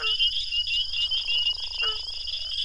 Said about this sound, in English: Reichling shared this recording of the dusky gopher frog's snoring croak from a pond in Mississippi, where thousands of captive-bred frogs have been reintroduced in the past few years.